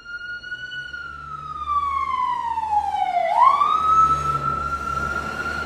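A loud Garda (Irish police) car siren wails with a single long tone that slowly slides downward, then sweeps sharply back up, over a low rumble of traffic and engine noise.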